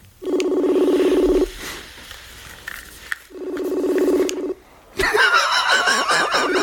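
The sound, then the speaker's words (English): Two long electronic ringback tones of an unanswered phone call, each buzzing about a second, separated by a pause of quiet line noise, before a louder, busier burst of sound cuts in. “Kind of ringing for a while.”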